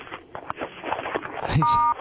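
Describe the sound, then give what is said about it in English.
A muffled, crackly call-in phone line with faint rustling as the caller plays with his phone, then a single steady keypad tone near the end, lasting about a third of a second at moderate loudness. “Someone's on the line, but he's just like playing with his phone.”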